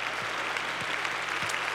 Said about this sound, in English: Yes, give them all a hand clap.